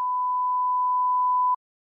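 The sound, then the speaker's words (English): A single steady censor bleep covering a spoken last name, a flat mid-pitched electronic tone lasting about a second and a half, heard alone at moderate volume before cutting off abruptly into silence. “Beneath that irritating beep is a last name.”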